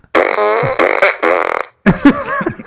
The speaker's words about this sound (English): I like the farts.